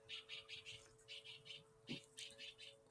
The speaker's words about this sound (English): Birds are singing.